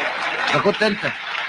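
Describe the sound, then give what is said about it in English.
A crowd applauds in a dense, steady wash of clapping, with voices laughing and calling out over it at moderate loudness. “If you, and everyone clapped, if you're unable to make one wear, if you're unable to make one girl who is your daughter wear the tarha, you want me to put a tarha on 10 million women myself?”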